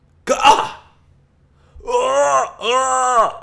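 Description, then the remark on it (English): A voice imitates a dramatic anime-style cough of someone coughing up blood: one sharp, rough burst followed by a pause, then two drawn-out strained, groaning vocal sounds with wavering pitch, fairly loud. “Like anime? It's like coughing up blood.”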